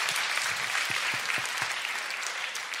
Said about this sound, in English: We have a round of applause for this man. Thank you very much.